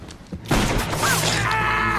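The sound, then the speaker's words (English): In a film scene, the cop Hartigan fires a large handgun and shoots off a man's ear: after a short quiet moment, a single loud gunshot bursts out, giving way to a sustained noisy roar with a thin, high ringing tone threading through it. “He blows his ear off.”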